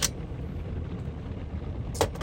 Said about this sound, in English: By the way, my new favorite thing here in the car wash is I turn on my camera, because I have an overhead.